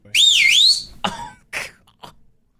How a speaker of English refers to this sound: Oh, I can whistle really loud. Yeah, uh-huh. I was camp counselor, so it was one way to get attention of the kids. Do you want me to whistle?